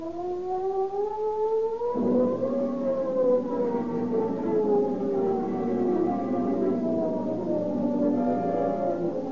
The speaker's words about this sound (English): The ominous wail of the San Quentin siren is the call to arms, which mobilizes Marin County law enforcement officers into a huge posse.